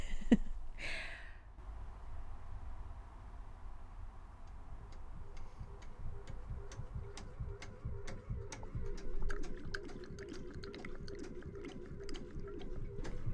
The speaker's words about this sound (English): The water pump. I'm pumping out my water after my shower. Quite the event on my boat. And there's a little switch to the side of my sink, and I'm watching my sink, and it's spurting and spluttering and talking to me.